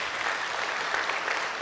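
A steady round of applause from a crowd, dense even clapping at a constant loudness across the whole short stretch with no voices breaking through.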